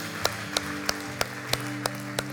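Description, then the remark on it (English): A crowd claps together to celebrate a moment just after a prayer, in a steady rhythm, about seven sharp unified claps roughly three per second, over sustained low musical tones playing in the background. “Come on, let's put our hands together and celebrate that moment for just a minute.”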